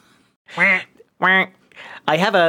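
A duck quacks four times in quick succession, loud, with harsh nasal calls separated by brief pauses; the third quack is softer than the others.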